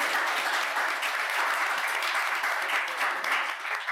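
A crowd applauds a participant whose idea made the shortlist, steadily for the full four seconds, a dense, even wash of many hands clapping at once, loud throughout with slight swells and no voices standing out.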